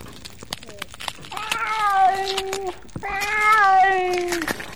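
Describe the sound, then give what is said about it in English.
A family's pet cat lets out two long, drawn-out meows in a row, each sustained for over a second and fairly loud, with faint clicks and rustling around them. “I mean, just look at the way he's taken to our cat.”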